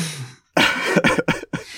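A run of harsh, rasping coughs comes in quick succession, close and fairly loud, after a brief hush. About three or four bursts are separated by short breaks, with no speech.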